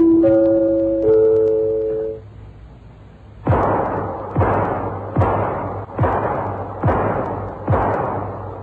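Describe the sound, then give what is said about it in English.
A brief tonal musical note fades out, then six sharp gunshots at target practice ring out one after another at a steady, even pace, each a loud booming crack with a short decaying tail; four hit the target through the heart and two through the shoulder. “Not bad, Johnny, not bad. Four through the heart, two through the shoulder.”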